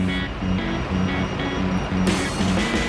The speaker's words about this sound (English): Morning rush hour in Manchester. But these motorists aren't just driving to work.